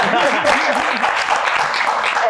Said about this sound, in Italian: Brava, brava, brava. Applauso per questa cosa.